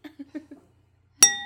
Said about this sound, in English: Pop some bottles. Ooh, you have a clink. I have two glasses. Very nice.